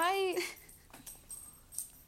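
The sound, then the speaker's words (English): A dog gives a short high whine, followed by light metallic tinkling from its collar tag, a few soft jingles scattered over a couple of seconds, fairly quiet. “He's having a grand old time jingling his little tag.”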